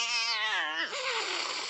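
A gray and black cat standing in the middle of a room gives a single drawn-out meow, fairly loud, sliding downward in pitch before breaking into a breathy, hissing rasp that fills the rest of the moment. No one speaks.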